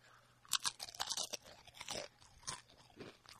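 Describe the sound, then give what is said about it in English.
Crisp crunching of a nacho chip being bitten and chewed, a rapid series of sharp brittle cracks over a few seconds with no talking. “There's a lot of crunch in that. That one was a crunch one.”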